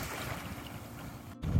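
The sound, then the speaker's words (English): Choppy water sloshes and splashes steadily around a kayak, a continuous hissing wash broken by a brief gap, then a louder low rumble of wind buffeting at the end. “I had to get far enough out before I could start this video, because as you can see, the waves are a little high. The water's a little choppy.”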